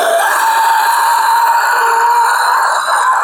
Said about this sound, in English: there was a lot of wind, yes.